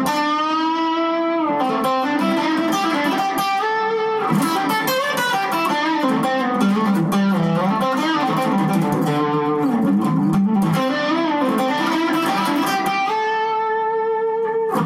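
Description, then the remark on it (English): A distorted electric guitar, played through an overdriven amplifier with its reverb dwell turned up, plays sustained chords and busy lead lines with a wet, splashy reverb tail, loud and continuous throughout with no voices. “Put the dwell up a little bit.”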